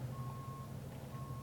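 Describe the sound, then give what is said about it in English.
A truck's reversing alarm sounds two long, steady high beeps with a pause between as the truck makes a three-point turn, over the constant low rumble of its idling diesel engine. No one speaks. “now I'm waiting for this truck to make a 3-point turn, right?”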